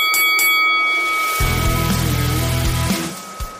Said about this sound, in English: At the sound of the bell, go.